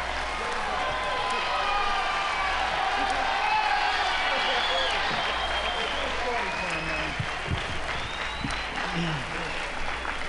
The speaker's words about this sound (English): Thank you. Thank you very much, ladies and gentlemen, for your kind applause. This is our first real appearance at Newport, and we really appreciate your kind attention.